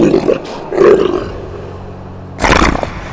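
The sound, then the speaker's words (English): A wolf snarls and roars in three loud bursts as it jumps from behind a thorn bush in a forest, rough and throaty, with a low rumbling pause between the last two. No one speaks. “A wolf jumps from behind the thorn bush.”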